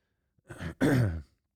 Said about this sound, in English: I really am having a rough time trying to continue to talk without coughing. So I may shut this one down, which is weird.